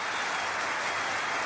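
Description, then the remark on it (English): A brief burst of applause, a sound effect played as a cue for a guest, a dense, steady crackle of many hands clapping at once, filling the short moment at an even volume with no voices. “can we have like some sort of applause cue for Sam?”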